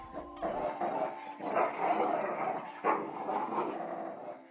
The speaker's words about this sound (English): The dogs, who were tied up by rope, snarled at him viciously.